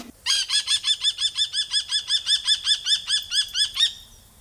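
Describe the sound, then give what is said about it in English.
A kestrel, a falcon, gives a rapid, insistent series of about seventeen sharp, ringing kee-kee calls, loud and steady in rhythm for several seconds before cutting off, with no voices. “The kestrel is a relatively common bird over here, but not as common as it is in other parts of the world, possibly because there's competition for food from other raptors and ravens and corvids.”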